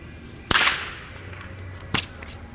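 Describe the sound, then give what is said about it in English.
A sharp, loud crack of a huge blue whip over a dozen feet long snaps out in a plaza and rings off with a short slapback echo off the church and the movie theater and a fading reverberant tail, then a second crack follows about a second and a half later. “You could hear a sort of short slapback echo off the church and the movie theater, and this long, quiet tale of reverberation.”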